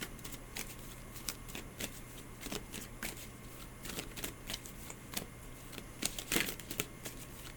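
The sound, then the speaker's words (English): Cards being shuffled during a card reading, a steady run of soft riffling flicks and snaps repeating through the whole stretch, slightly louder bursts near the end, with a low hum underneath and no voices. “You're addressing it and closing your eyes non-verbally as I shuffle.”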